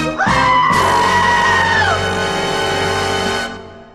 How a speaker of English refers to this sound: That was the soundbite I was going for. There you go. The screaming goat. Screaming goat. Yikes.